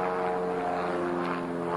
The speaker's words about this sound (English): The plane approached the Earth, bouncing off the ground a few times before landing and rolling towards us on what looked like a flat tire. It was an old, hollowed-out prop plane with just enough room for the pilot